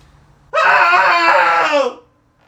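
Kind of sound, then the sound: human body sound, cathartic group scream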